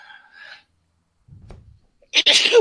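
A single loud sneeze from a man bursts out near the end, preceded by a faint low breathy intake and quiet murmuring sounds with short silences between.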